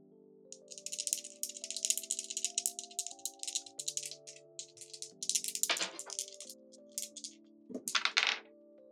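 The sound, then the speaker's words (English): Two dice rattle steadily in a cup or hand for several seconds during a tabletop game, with a couple of sharper clattering bursts as they are rolled out, landing on a 3 and a 6, over soft sustained background music. No one speaks. “So 2 dice. 2 dice.”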